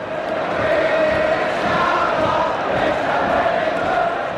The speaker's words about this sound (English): Crowd singing at a Derby County versus Arsenal game.